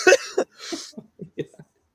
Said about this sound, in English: You're just sick. Gosh, stop coughing.